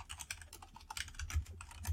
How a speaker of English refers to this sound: I hear the typing.